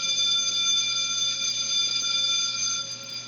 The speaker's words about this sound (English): There's the bell. Time's up.